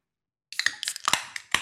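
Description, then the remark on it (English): A bottle opener works the cap loose from a bottle of Lost Coast Brewing's Great White, a 4.8% Belgian-style white beer: a quick cluster of sharp metallic clicks and clinks with a bright ringing edge, ending in a final snap, with no voices. “That's a beer opener. Ah, the sweet sound.”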